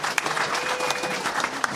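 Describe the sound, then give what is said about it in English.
Steady, dense applause from a panel audience clapping for a writer of the shows Children's Hospital and NTSF, many hands clapping at once in a continuous wash of sharp crackling bursts, fairly loud throughout with no voices standing out. “it would make me feel good if you would clap the loudest for me.”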